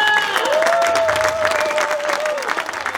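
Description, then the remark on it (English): An audience breaks into steady, dense applause, with the claps blending into a continuous wash of noise. A sustained high whistle or cheer rises above the clapping for most of it. “Let's give a round of applause to everybody.”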